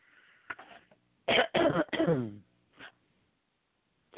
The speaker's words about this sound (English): Well, hey, I mean, even though we deviated and you had a couple coughing fits, we didn't do too bad.